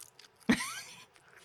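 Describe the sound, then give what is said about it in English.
One crisp crunch as a single raw spinach leaf is bitten, a short snap that fades quickly against an otherwise quiet background with no talking. “Although raw spinach is good. It's got a little bit of a snap to it.”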